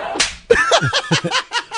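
A sharp, close face slap cracks out, followed by a quick, rhythmic run of loud smacking bursts spaced a fraction of a second apart, with no clear talking.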